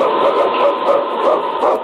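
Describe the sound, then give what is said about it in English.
A dog barks over and over in a quick, steady rhythm, close and fairly loud, with the barks running together into an almost continuous stream and no one speaking. “It's King, swiftest and strongest lead dog of the North Country, blazing the trail for Sergeant Preston of the Northwest Mounted Police in his relentless pursuit of lawbreakers.”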